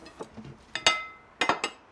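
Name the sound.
dishes being cleared away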